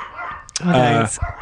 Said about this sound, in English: Dogs are going crazy.